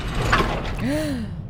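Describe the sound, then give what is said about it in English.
An elevator door mechanism grinds open: a dense mechanical rumble with a rising-then-falling creaky squeal near the end, all within about a second and a half, with no talking. “Now the elevator's going up for some reason. Now it's going back down. Stops. She's stuck. Door opens.”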